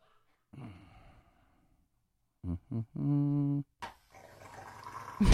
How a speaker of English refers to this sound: This is a dog getting his nails clipped. I hate it so much.